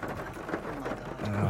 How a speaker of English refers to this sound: Just as the rain starts getting really heavy.